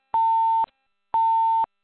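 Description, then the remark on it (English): Two identical electronic phone beeps from a participant's phone on a conference call, each a steady half-second tone with a clean pitch, separated by a half-second gap of silence. Loud, with no voices present. “Probably somebody fell asleep and not realizing their phone doing that.”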